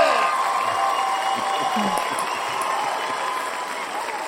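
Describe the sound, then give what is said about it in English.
A crowd applauds and cheers in a steady, dense wash of clapping with voices mixed in, holding at an even, fairly loud level for a few seconds. “I double clapped.”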